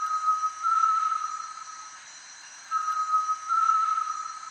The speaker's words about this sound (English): This eerie sound can be heard in the lowland jungle throughout much of Central and South America. It's the voice of a great tinamou.